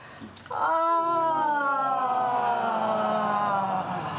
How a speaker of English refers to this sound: And it's a simple ah. And we can start with a yawn.